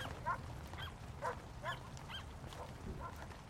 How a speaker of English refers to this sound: Soon, another neighbor appears, walking a bigger dog. This dog has a sparkly collar that glitters in the rain. The two dogs bark hello to one another as they pass.